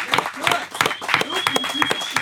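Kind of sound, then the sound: crowd, clapping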